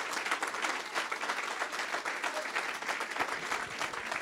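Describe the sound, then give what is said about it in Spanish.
A large crowd gives a round of applause to the Lord, applauding steadily: a dense wash of many hands clapping at once, sustained at an even, fairly loud level for several seconds with no one speaking. “Give the Lord a round of applause.”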